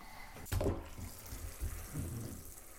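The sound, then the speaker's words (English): An orange bath bomb plops into water with a quick splash, followed by a steady, soft fizzing hiss and faint bubbling, with no one speaking. “Right, should we pop it in the water?”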